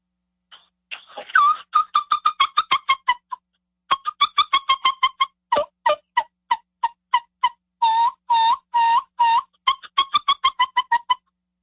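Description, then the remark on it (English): Rapid runs of short, high turkey peeps from a brand new mouth call, broken by a few longer rolling purr-like notes, with brief pauses between bursts and no talking. “You're telling me they don't hear the peeps and the purrs and stuff like that.”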